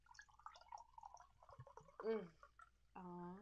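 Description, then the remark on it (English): A drink is poured close to the microphone in short gurgling bursts, the glugging rising and fading, with faint voices murmuring in the background. “Okay, pour up. Gotta get it by the mic.”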